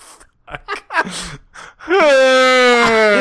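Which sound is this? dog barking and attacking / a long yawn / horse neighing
a long yawn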